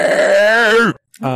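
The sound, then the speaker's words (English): A person's voice imitates a quilled creature's horrible hissing roar: a loud, raspy, wavering growl lasting nearly a second that cuts off sharply, then a short second burst begins after a brief silence. “So this creature like lets out a horrible hissing roar.”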